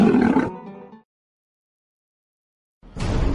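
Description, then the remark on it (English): A loud big cat roar bursts out at the start, rumbling and harsh before fading into silence, then another growling roar surges in near the end. “One puff of Padilla and you'll roar too.”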